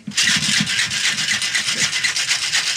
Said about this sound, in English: All right. We ran out of mixing music. That's okay. I'm going to make some noise with the cocktail shaker here.